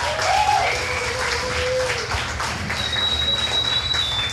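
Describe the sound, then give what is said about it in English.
A crowd applauds itself at the end of the night, a dense wash of clapping and cheering that holds at a loud, even level throughout, with a few faint whistles rising above it. “Give it up one more time for yourselves.”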